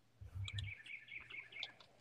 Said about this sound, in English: We have birds again. Second podcast in a row.